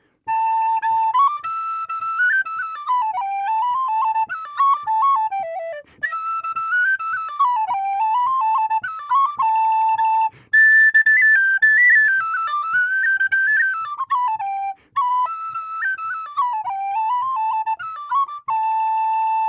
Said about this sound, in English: Show us what the whistle sounds like. Oh, sure. Absolutely. Here's a tune that comes from a great whistle player from Doolin in County Clare,